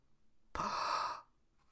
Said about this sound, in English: The whole congregation gasps as they see Shrek.